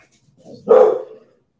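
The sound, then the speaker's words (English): A single loud dog bark rises sharply out of a brief low growl-like onset, then trails off, with no talking over it; the dog keeps running back and forth to the garage. “Keeps running back and forth to the garage.”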